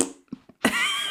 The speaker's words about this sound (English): Literally farting on those books. If you put that book in my face, I will fart on it.